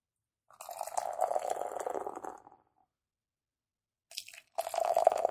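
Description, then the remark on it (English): Ground Loop sour saison beer (4.5% alcohol, from a Connecticut brewery) pours in a steady, fizzing stream for about two seconds, then stops; after a short pause, a second splashy pour starts, fairly loud, with no voices. “You're splashing. Sorry. I splashed a little bit.”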